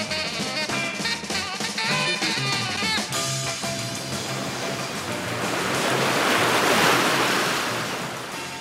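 Surf rolls in on Rossnowlagh Strand with a broad rushing hiss that swells to a loud crest near the end and then eases back, with a musical tone fading out at the start.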